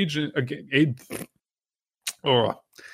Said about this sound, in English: I'm sorry for the burping. We don't do this on the show. It's rather rude.